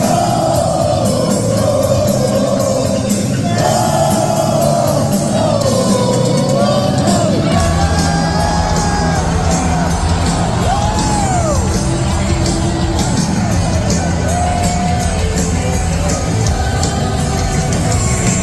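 A loud concert crowd roars continuously, with whoops, yells and shouted bellows rising over a dense wall of cheering that never lets up.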